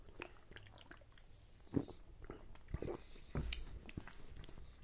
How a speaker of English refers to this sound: Not a big opening to smell from, though, but here we go. Let's take a sip.